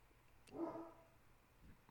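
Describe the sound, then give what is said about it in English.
A single short dog bark rings out, fairly quiet, followed by a fainter yelp-like sound near the end. No one speaks. “I'm going to listen to my dogs bark.”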